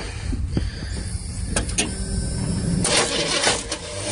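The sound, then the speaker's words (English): A truck's failing starter strains against the engine as the truck is being started, catching a bad section of flywheel teeth: a low mechanical rumble broken by sharp clicks, then a harsher grinding whir swells in the last seconds without the engine catching. “So anyway, try to start the truck, right?”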